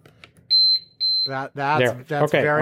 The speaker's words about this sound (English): Well, I've got the beeping beeper. Yeah, but it's silent while it's doing it. It only beeps at the end.